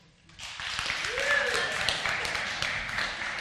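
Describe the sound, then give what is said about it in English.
A large audience, including people in an overflow room asked to clap louder, bursts into sustained morning applause for a pastor, swelling quickly and holding steady, a dense wash of clapping with a few cheers and whistles mixed in. “You have to clap louder, please.”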